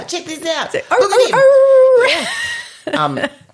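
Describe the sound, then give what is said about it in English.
A person sings a short tune while a dog howls along, one drawn-out, steady howl rising over the voice before both trail off, fairly loud. “I start singing and he starts singing.”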